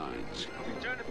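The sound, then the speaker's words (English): A helicopter's steady, rumbling rotor drone from a movie trailer fills the brief moment, fairly loud and continuous, with indistinct voices mixed in beneath it. “I hope it has an actual plot, and it's not just people in helicopters screaming into a microphone.”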